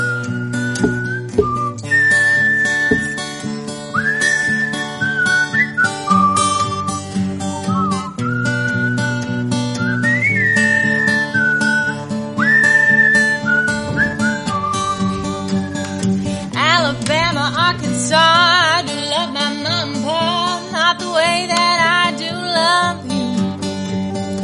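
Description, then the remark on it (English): People whistle a bright, steady melody over a strummed instrumental backing; partway through, more whistled lines join in, thickening the tune into harmony. “I think I've lost the ability to whistle thanks to that beer”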